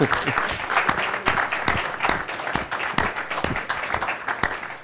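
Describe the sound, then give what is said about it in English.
Sustained applause from an audience for the staff who worked in the kitchen and served the food, many hands clapping steadily and fairly loudly for a few seconds with no voices over it. “And so I wonder if you could take a moment and just give them a round of applause, please.”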